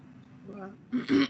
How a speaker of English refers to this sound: Oh, clear your throat out.